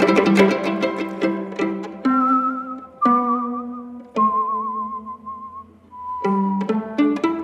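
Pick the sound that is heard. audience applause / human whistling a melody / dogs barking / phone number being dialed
human whistling a melody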